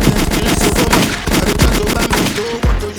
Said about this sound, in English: Wait, where my gunshots at? Hold on. Oh, shit.